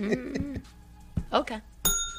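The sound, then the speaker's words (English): A single bright bell ring near the end, struck once and left to sustain with a clear metallic shimmer, following a few moments of voices talking. “You rang the bell.”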